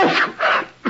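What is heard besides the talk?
sneeze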